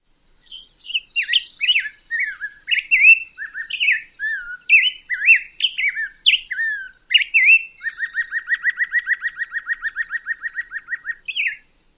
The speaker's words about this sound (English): The notes can vary in length, making the rhythm jerky. Think about it as it would be hard to conduct it as a symphony, because the rhythm is not smooth. One more time, here's the black-headed grosbeak.